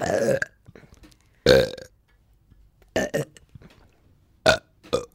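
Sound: deliberate burp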